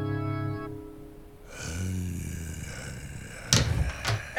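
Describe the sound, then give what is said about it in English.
A door opens at night in the desert as someone steps out into a central area, with a low whoosh of air, followed by two sharp, loud clunks near the end, like a latch or the door knocking against its frame. “the door opens as Stan, the zombie king, also steps out into the central area”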